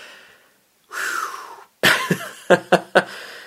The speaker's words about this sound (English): Let me clear my throat for this one, Stuart.